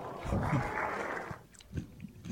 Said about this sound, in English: Oh, I hear him chewing.